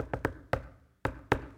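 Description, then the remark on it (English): Sharp knocking on a person's home door: two quick raps, a third after a short beat, then a pause and two more firm knocks, clear with no one talking. “I don't do this much anymore, but used to go to people's homes and knock on the door.”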